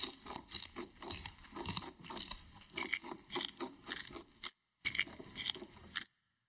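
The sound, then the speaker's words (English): Crunchy munching repeats in quick bursts as rabbits chew, with a brief pause near the end before the chewing resumes and stops. No voices are present. “dig, scrabble, scratch, scratch, spring, hurdle, dash, dash. Muncha, muncha, muncha.”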